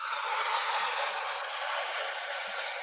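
A person takes a long, steady inhalation during a guided breathing exercise, a soft airy hiss that holds evenly for about three seconds, with no talking.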